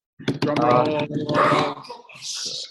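Dogs bark and growl excitedly, a loud, rough burst of snarling followed by a couple of sharper barks and a higher, hissy yelp at the end.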